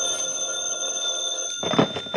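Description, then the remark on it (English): A telephone rings with a steady, bright, sustained tone, clear, then a burst of rustling, shuffling noise joins in near the end. “The phone woke me up.”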